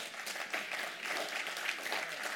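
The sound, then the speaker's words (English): Light, polite golf-clap applause from a small crowd, a soft steady patter of scattered hand claps, continuing evenly for a couple of seconds with no voices. “That was a beautiful golf clap right there.”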